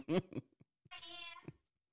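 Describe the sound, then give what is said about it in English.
A kitten in a small room lets out a drawn-out, high-pitched meow, fairly loud, preceded by a couple of shorter squeaky cries and followed by a brief trailing chirp. “He's hiding behind a kitten, and he's trying to hit an air horn in this small ass room I'm in.”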